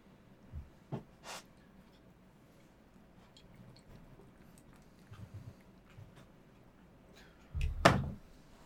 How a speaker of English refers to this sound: What a door! What an unnecessarily complicated door. It's similar to the Empire door, though.